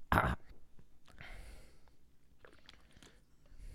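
Heavy breathing: a sharp, loud exhale at the start, then softer rasping breaths with a few small mouth clicks, and no talking.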